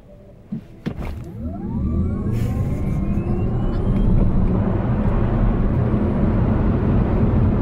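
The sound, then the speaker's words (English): A fast four-door sedan launches and accelerates hard, its motor whine climbing steadily in pitch over a swelling roar of road and wind noise, loud throughout, after a couple of sharp thumps at the start. “And here's the reaction as somebody experiences acceleration.”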